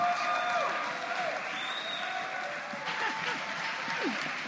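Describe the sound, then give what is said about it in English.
Sustained applause from a large audience giving Jesus a hand clap, dense hand clapping at steady volume, with scattered voices and cheers rising over it. “Give Jesus a hand clap as Dr.”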